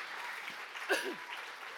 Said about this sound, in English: Come on, if we believe that, can we give Jesus a big shout of praise in this room?